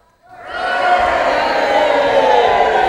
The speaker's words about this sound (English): There we go, that's better. So it's Palm Sunday, we get to sing and shout and cheer.